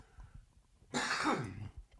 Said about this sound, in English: Keep all the coughs, Miles. Let the people know how distraught I am. Don't remove any of the coughs.